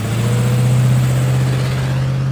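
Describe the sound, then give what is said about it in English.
Harry Heap's banged-up car drives away into traffic, its engine humming steadily in a loud, low droning rumble that holds constant throughout with no voices present. “Poking his head around the corner, Buster Lee watched Harry Heap's banged-up car disappear in the traffic.”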